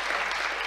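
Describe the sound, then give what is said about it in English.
Steady applause from an audience for the £1,136,000 given over the past year, a dense wash of many hands clapping at once, fairly loud and continuous through a short moment with no talking. “That's got to be worth a clap, hasn't it?”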